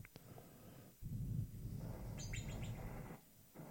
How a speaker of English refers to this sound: Whistle pig. Sounded like a bird. Yeah, it does. It whistles. How cute is that, dude?